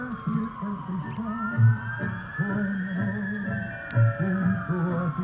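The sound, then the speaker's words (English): A wailing emergency siren rises and falls steadily in the background while people talk over it in the foreground. “Beautiful sirens in the background.”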